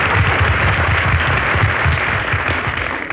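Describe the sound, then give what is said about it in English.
Steady, dense applause from a large audience greeting a performer's entrance onto the stage fills the whole stretch, a continuous loud wash of clapping that holds level and then eases slightly toward the end, with no voices standing out. “Phil, how in the world can you walk out on the stage like that and ask an audience to applaud you?”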